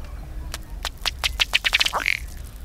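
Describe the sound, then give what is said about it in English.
A male duck's courtship display: he strikes his chest with his bill, forcing air through his feathers so the water bubbles, about ten hollow, bubbling taps speeding into a rapid run, then one short belching croak as he jerks head and tail forward, over a low rumble. The duck is bright rufous red with a black and white head and sky blue bill. “These blows force air through the feathers, causing the water to bubble. The male's display ends with his head and tail jerking forward and a low belching sound.”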